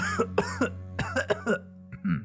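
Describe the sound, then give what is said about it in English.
A series of short, raspy coughs from a woman coughing into a handkerchief comes in quick bursts, fairly muted, with a brief pause before a final cough, all over a low steady hum. “grabs a handkerchief from her pocket and coughs into it.”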